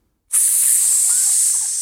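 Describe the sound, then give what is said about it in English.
A loud, steady sizzling hiss starts abruptly after a brief silence and holds constant and bright, with no voices. “Sizzling for the summer.”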